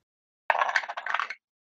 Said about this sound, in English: You just roll. And, oh, you gotta roll the dice.